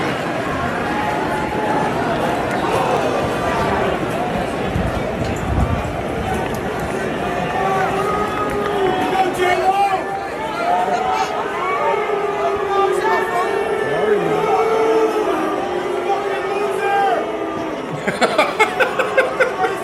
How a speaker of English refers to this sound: If people missed it, this is just this is Ted Cruz getting booed at a baseball game. Not just booed, heckled mercilessly.